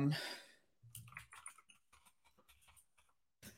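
Rapid clicking of keys on a computer keyboard, a quick irregular burst of taps, with a brief noisy rustle at the start and a final click at the end.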